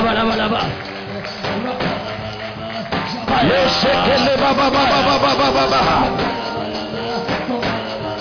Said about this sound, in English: As we clap, open the heavens. Now, clap your hands and pray.